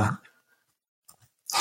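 A couple of soft, quick computer mouse clicks in a quiet gap, framed by brief bursts of louder noise at the start and end.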